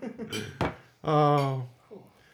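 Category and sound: household object, glasses clinking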